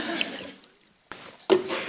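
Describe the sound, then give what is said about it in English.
Someone takes a drink of water, with a soft slurping noise followed by a short pause and then a couple of abrupt gulps and swallows. “Time for a drink of water.”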